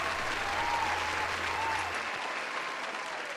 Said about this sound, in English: Cue the applause.